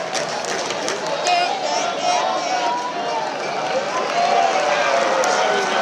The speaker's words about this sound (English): What are they cheering? They're cheering for the Cubs.